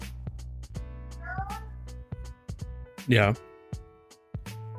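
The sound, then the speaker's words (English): A toddler who has just woken up calls out for mom once in a loud, high, wavering cry lasting under a second, heard over a steady humming background with a few faint clicks. “My toddler just woke up.”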